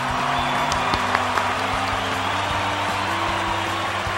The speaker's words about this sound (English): Yay, I'm looking for the applause. Where is it? I can't find it. Here it is.